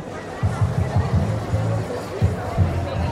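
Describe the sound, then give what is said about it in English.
A crowd of people chattering outdoors: overlapping voices blend into a steady murmur, with a few louder bursts of speech rising above the babble, though no single conversation stands out clearly. “So we've managed to move past that crowd of people and we're slowly making our way back down the hill to go home.”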